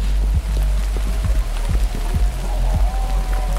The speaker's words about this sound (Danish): Nå, men jeg kan fortælle dig, at det har regnet hele dagen, og det er jo heller ikke så rart. Prøv at høre.